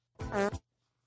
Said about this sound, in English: that's why I call this fart the forklift